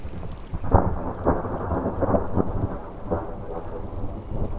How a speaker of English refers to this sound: Not far away, near Thunderbolt Peak, the thunder rolls.